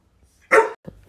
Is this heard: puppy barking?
yes